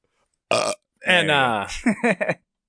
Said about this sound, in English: I hesitated to burp away from that. And then I came back for it.